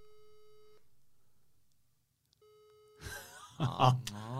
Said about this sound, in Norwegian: Det litt tidlig, vi spilles inn, ja ja, klokka 10 da, nå det ringer